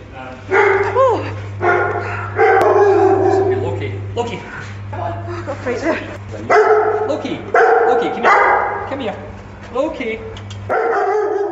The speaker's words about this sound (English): was the resident bunker dog